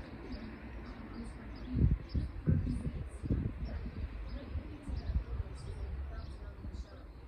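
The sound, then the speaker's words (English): Outdoors on a sunny balcony with a bit of breeze, a steady roar of passing cars fills the background while a few small birds chirp faintly and intermittently above it, with a louder rumble swelling briefly early on. “And as you can hear, there's quite a bit of cars going by at the moment. There's a few birds.”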